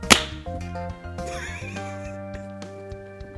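One sharp, loud hand clap at the very start, then sustained tonal, whinny-like sounds with layered pitches carry on to the end. No one speaks.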